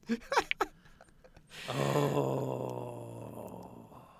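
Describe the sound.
A person growls: a few short breathy vocal bursts, then a long, low, rumbling growl held for a couple of seconds, slowly fading.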